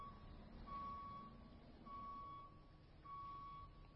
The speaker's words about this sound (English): Dump trucks just keep coming.